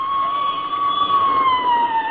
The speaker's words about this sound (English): There goes another squad car, McGee. Mm-hmm. What do you suppose is going on? Probably going down to Joe's grease spot to get the chief a hamburger. Them guys love to tear down Oak Street with a siren screaming